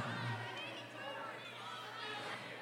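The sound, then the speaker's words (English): A live audience yelling out guesses of a cartoon character over one another in a steady, dense wash of overlapping voices, with no single voice standing out clearly. “I do want the audience to keep yelling, though, because I honestly haven't...”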